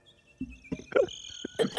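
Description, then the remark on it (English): Crickets chirp in a steady high trill, with several louder, throaty croaking bursts over it, like a short night-time nature effect with no voices. “Crickets.”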